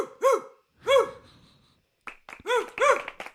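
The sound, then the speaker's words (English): A person imitates a dog with loud, yappy barks: two spaced woofs, a short pause, then a quicker cluster of several more barking sounds. “Oh, he actually thinks it's a dog.”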